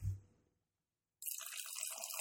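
A short low knock, a brief silence, then a dark 13% beer from a skinny 12-ounce can, about six months old, pours steadily into a glass with a bright, fizzy, gurgling rush that stays fairly loud until the end, with no talking.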